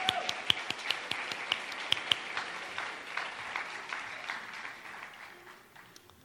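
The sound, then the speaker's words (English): An audience breaks into a round of applause for a volunteer making her way up, a dense patter of many hands clapping with a few sharper claps standing out, holding steady before gradually thinning and fading. “Let's give her a round of applause as she makes her way up.”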